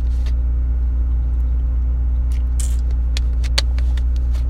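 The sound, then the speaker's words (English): Inside a parked car with a steady, heavy low hum and rumble throughout, a few light clicks and ticks scattered over it near the end; no voices. “I'm sitting in the car right now.”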